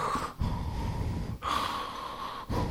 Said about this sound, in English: So there's breathing going on. We're going down the stairs.